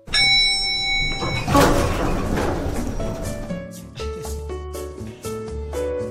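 A bright elevator chime rings, then the doors slide open with a loud whooshing rumble, followed by a string of soft melodic tones. No voices are heard.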